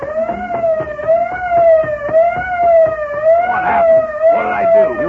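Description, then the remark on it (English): A truck's auto alarm system, set off when its lock was broken open, blares nonstop, a loud wailing siren tone that wavers slightly up and down in pitch throughout, with no voices over it. “That fool, he's broken the auto alarm system.”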